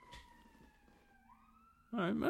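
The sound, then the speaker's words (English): An ambulance siren wails past, its steady tone sliding lower in pitch as it moves away, before a person starts talking. “Sorry, an ambulance just went by.”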